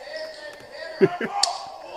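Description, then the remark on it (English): A single sharp, fleshy smack of an open hand striking a woman's face in a slap-fighting contest, loud, followed by a couple of softer thuds, with a voice speaking briefly and room noise underneath; she is knocked out. “Get the slap.”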